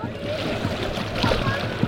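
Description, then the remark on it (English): Several coconuts, tossed by a family into the Arabian Sea at sunset as an offering to the sea god Varuna, splash into the water one after another, short wet plops over a steady wash of surf, with people's voices murmuring in the background. “As the sun begins to set, he joins his wife and toddler to toss the coconuts into the Arabian Sea, an offering to the sea god, Varuna.”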